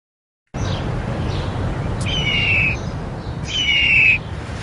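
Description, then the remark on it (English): Two harsh, screeching hawk cries ring out one after another, each lasting under a second, over a steady low rumble of background noise. “I like that when they pull up the law hawk, it in the phone book, it even makes the caw.”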